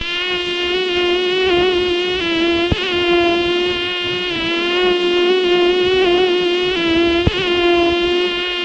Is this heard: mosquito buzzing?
yes